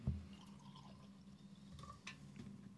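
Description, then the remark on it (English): Beer is poured into a cup: a soft, steady liquid splash with faint fizzing and a few drips, fairly quiet, with no one talking. “I went a little hard in my pour.”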